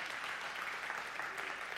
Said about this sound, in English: Can you just give God a round of applause? We are celebrating.